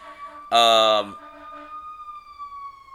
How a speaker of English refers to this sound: Sorry, fire truck going by.